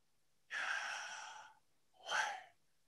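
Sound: deep inhale and exhale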